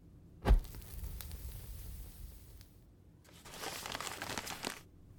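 A slip of paper being crumpled and burned: a sharp crackle at the start, a quieter lull, then a longer burst of dense, crinkling rustle before it fades out. No voices.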